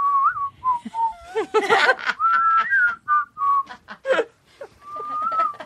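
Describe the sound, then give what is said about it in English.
A slow, eerie whistled melody carries through, with wavering sustained notes and short pauses between phrases, clear with no talking over it. “I have been walking around the house whistling …'s creepy whistle. Can we hear it?”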